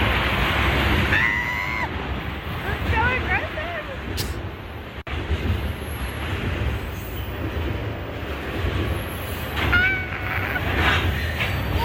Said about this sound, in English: We got an audio clip of the train incident, and I'm going to play it for you right now. Monkey train is going over us.